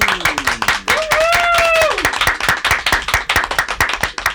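Dense, steady applause from a crowd, sharp hand claps running throughout, with a brief high whooping cheer rising over it near the start.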